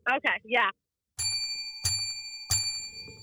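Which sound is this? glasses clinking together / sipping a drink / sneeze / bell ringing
bell ringing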